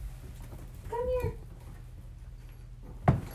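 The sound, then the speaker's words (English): A cat stuck in the spare bedroom of an apartment gives one short, plaintive meow over a steady low indoor hum. A brief knock or thump follows a couple of seconds later, with no talking. “And, oh, my cat's stuck.”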